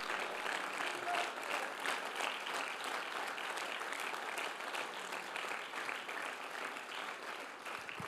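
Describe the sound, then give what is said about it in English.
A large church audience stands and applauds steadily to thank God for their pastor of 50 years, dense overlapping hand claps filling the room at a sustained, fairly loud level for several seconds without letting up. “Stand up and clap your hands, everybody.”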